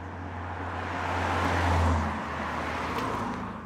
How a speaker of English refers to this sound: The people in the camp say they hardly notice the road noise, but to me it sounds like when you have train tracks right next to your apartment.